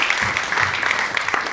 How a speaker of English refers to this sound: Do you know, as the summer rolls on, the applause becomes more polite little ripples.